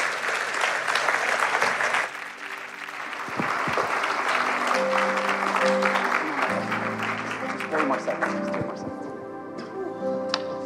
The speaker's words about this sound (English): Can we applaud the Lord and welcome Pastor David?